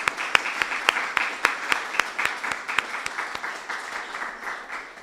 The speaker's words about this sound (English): So if I could just get a round of applause for Visor and for the Org Gallery